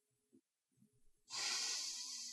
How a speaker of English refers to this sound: So go ahead. Take a whiff.